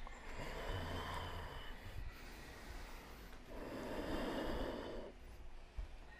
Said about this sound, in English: Ujjayi breathing is a technique, and it takes some practice. And the sound is everything. And it doesn't have to be loud, but you want sound as long as you can hear it.